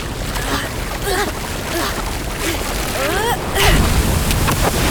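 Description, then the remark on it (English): A steady rush of ocean surf swells as the first wave of a surfing competition surges in louder toward the end, with brief voice-like cries rising and falling over the churning water. “Looks like we have our first wave of the competition approaching. Here comes the wave!”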